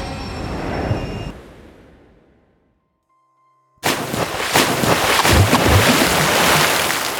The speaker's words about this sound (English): Then three splashes. I turned around and looked over the edge. Inside three rippling rings of water and below the bubbles and foam, I could see the colors red, yellow, and blue fade into the abyss.